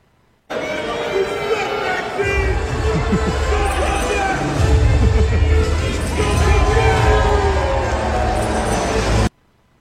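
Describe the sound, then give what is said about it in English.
A large arena crowd at a WWE live event booing wrestler Maxine Dupri, a dense, sustained roar of low jeering voices that swells heavier partway through and holds steady for several seconds before cutting off. “All right, guys, Rhea Ripley and Zelina Vega respond to viral video of Maxine Dupri getting booed at a WWE live event.”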